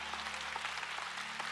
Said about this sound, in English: I like that. Hey, and while you're in the clapping mood